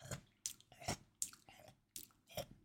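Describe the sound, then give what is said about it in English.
Someone imitates a slug quietly munching on petals, making soft, wet crunching bites with their mouth that repeat in a steady rhythm about twice a second, hushed. “And it transpired that was a slug munching on some petals.”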